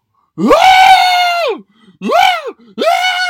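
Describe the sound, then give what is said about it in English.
A man loudly reenacts the startled scream he gave when an off-leash dog came up behind him as he walked into a villa: one long drawn-out shriek followed by two shorter bursts, with brief pauses between them and no other talking. “Yeah, I screamed a little bit.”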